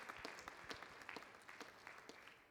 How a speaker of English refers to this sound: Won't you give the Lord a hand clap of praise tonight? Praise the Lord.